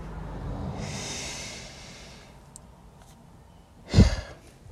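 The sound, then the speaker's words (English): A slow, airy inhale lasting a second or two during a breathing exercise, then a short pause and a forceful, breathy exhale, fairly loud, with no talking. “So without further ado, let's start breathing, guys.”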